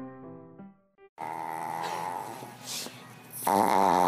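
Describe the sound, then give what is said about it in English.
A brief tonal jingle gives way to the raspy snorting and snuffling of Bernadette, a 9-year-old Boston Terrier, continuous for several seconds and growing louder and more wheezy toward the end. “So tell me about this little tiny snort machine you got here.”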